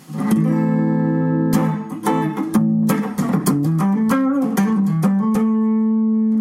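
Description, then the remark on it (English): Clean electric guitar played through a Mesa 550 Express 50-watt amp with its reverb turned off: a sustained chord rings out, followed by a run of quick picked notes and a held chord at the end, steady and fairly loud. “Obviously, the reverb is turned off on the amp. And we're going to try clean first.”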